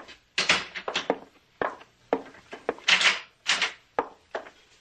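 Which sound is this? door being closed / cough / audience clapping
door being closed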